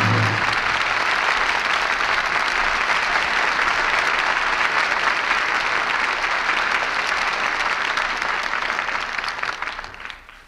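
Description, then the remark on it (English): Sustained applause from a large audience for the performers Loretta Young, Brian Dunleavy and Jeffrey Lynn as the curtain falls on the play Jezebel, a dense steady wash of clapping that holds for about ten seconds before tapering off at the end. “And we all join in applauding the artists who brought us this play tonight.”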